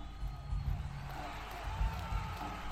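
Dense, steady roar of a large crowd cheering at a stadium concert, with shouts and whoops rising above a constant wash of noise and low rumbling bursts throughout; an old recording from a YouTube clip.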